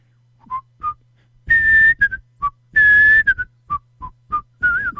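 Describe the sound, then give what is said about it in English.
A person whistles a bouncy melody alone, the whistled opening theme of a TV show, with short staccato notes broken up by a couple of longer held tones, clear with no talking. “that's a song from Andy Griffith, the whistling opening in Andy Griffith”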